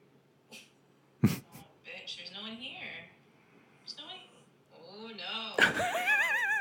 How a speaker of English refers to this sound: Okay, look at this girl. She's looking at the door. She's barking. Huffing.